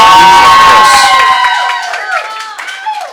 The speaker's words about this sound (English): If you agree, clap.